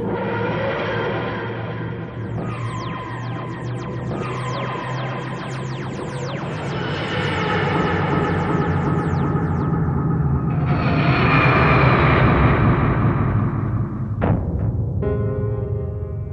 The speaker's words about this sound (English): The engine, the TARDIS rotor goes up and down. There is the grinding and groaning of ancient engines as the TARDIS heads off to its next destination.